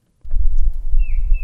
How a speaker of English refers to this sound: The quiet of the Piney Grove Preserve in Wakefield is punctuated by the sound of birds and wind rustling through the trees. But for 2 weeks, the land owned by the Nature Conservancy is a training ground.